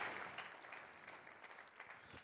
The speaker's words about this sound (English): Now, listen, that was my wife I asked you to clap for, so give it up for her.